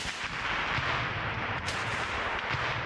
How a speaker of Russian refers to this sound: Противник видит наших штурмовиков слишком поздно. Отвечать тяжело, работает РПГ.